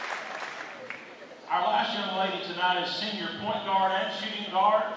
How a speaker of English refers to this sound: Let's have another round of applause for senior shooting guard